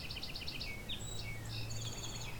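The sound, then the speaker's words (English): A northern cardinal sings a quick series of repeated whistled notes, then a few sliding slurred phrases, fairly faint over a steady low outdoor hum along a rail trail with fields on either side, with other birdsong faintly mixed in. “Northern cardinal.”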